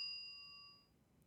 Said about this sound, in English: Wait, did I hear a bell? You heard the bell. Do I have to sing again? You do.